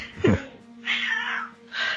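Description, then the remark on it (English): A cat vocalizes in the background: a short sharp burst followed by two drawn-out, whiny cries, moderately faint, with no talking over them. “Is that a cat? Yeah.”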